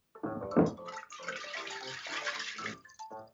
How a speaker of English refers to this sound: What happens when you pour oil into water? It floats. It doesn't mix.